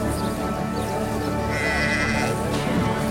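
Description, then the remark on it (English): A sheep bleats loudly, a sustained wavering cry that fills the whole moment, with a rough, nasal tone and no other voices present. “And so to make a living, I've learned how to raise a sheep. I choose to buy the skinny, weak sheep, the ones nobody wants.”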